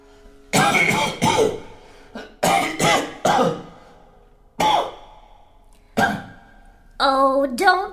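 A man with consumption coughs hard and repeatedly, harsh bursts coming singly and in pairs with short pauses between, ending in a strained, groaning vocal sound.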